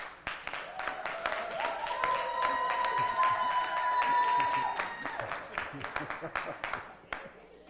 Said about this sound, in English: I came all the way from San Diego, and that's the applause, y'all.